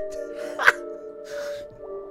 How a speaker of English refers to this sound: All right. I gotta yawn again. God. Damn it.